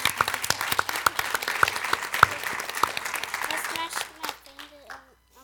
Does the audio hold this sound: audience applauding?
yes